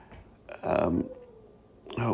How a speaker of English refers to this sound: My dog's upset about something. I forgot he was outside. We have convinced ourselves, as you'll hear my dog barking, he's a beagle / spaniel mix, so you can hear the hound dog in him.